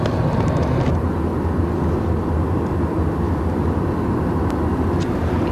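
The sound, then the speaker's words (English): A steady, heavy low-frequency rumble of road and engine noise fills the cabin of a moving car, constant, with no talking and no breaks in the drone. “We're very crowded in the back of this car.”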